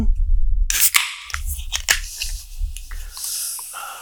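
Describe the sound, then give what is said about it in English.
A beer can pops open with a couple of sharp metallic cracks, then a steady hissing fizz of carbonation spraying onto a keyboard, over low handling rumble. “It's not spilling so much as it's cracking it open, baby, and just some of it, you know, sprays all over.”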